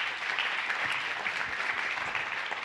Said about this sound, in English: one more round of applause just for being here?